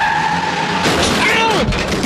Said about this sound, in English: I'm hearing traffic. They're coming very close to the porta potty now. All right, well. Actually, a car. Oh, my God, I hear a car coming. Oh!